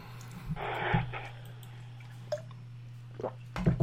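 A quiet sip of water followed by soft swallowing and a few small wet clicks of the mouth, heard alone over a low steady electrical hum.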